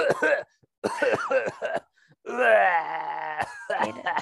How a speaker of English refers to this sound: I hate sound of people coughing.